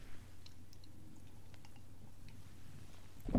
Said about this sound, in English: Okay. First, I'll have a sip of coffee.